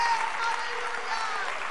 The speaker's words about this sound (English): Somebody clap your hands to the Lord and give Him a little praise right now.